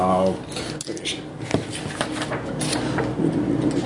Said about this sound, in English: Oh, I love it when the GM rolls dice.